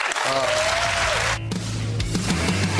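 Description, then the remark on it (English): A small crowd of about 10 people claps when Biden says police officers and emergency responders should be let go, a dense, steady wash of applause, with a brief whistle-like tone early on and voices murmuring underneath throughout. “Anyway, clap when Biden says, yes, let them all go, fire them.”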